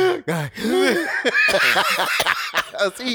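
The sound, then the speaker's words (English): A few short, rough coughs from a man burst out, tangled with chuckling and voiced laughing sounds from other people, all fairly loud and continuous over a few seconds. “He coughed.”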